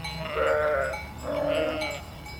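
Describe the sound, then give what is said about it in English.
Two drawn-out bleats from pregnant Merino sheep during a sheep drive of more than 3,000 sheep moving down the main street of Meeker toward summer pasture upriver, moderately loud, with a steady murmur of other animals and outdoor noise underneath. “More than 3,000 pregnant Merino sheep from the Theo's Swallow Fork Ranch made their way down the main drag in Meeker Tuesday on the way to summer pasture upriver.”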